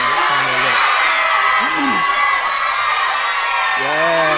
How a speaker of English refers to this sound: So you guys are going to be shouting, yeah, and the loudest, whoever shouts the loudest is going to get some of the lollies. So you got to shout loudly.